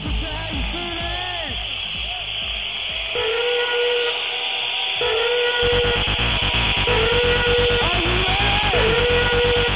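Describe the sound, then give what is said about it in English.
A loud, shrill whistle blows in sustained bursts over a constant hiss, with shifting tones and rapid pulsing layered underneath, recorded live in Manchester. There is no talking. “Those of you who've heard this before will know it's about 20 odd minutes long, so I've done a short edit for you, give you a flavour of the thing, see if you can find your whistle and some nasal spraying before it ends.”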